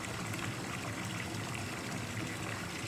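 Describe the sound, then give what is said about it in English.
A toilet flushing: a steady, continuous rush of running water that holds an even level throughout, with no voices over it. “Flush again. Just keep flushing.”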